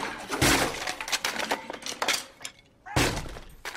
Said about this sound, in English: I couldn't resist. Smashing the guitar of someone singing a flowing love song was on my quintessential college experience list.